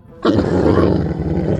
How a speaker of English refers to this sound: Walrus, incoming! We can talk to this walrus, figure out why he's so mad.